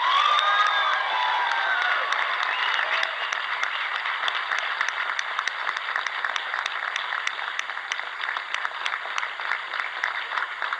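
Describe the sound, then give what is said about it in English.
A large crowd cheers and applauds steadily at an evening event, a dense wash of clapping with shrill whoops and shouts rising over it early on, then settling into sustained applause that stays loud throughout. “There's probably another person who maybe is listening to your cheers here tonight also.”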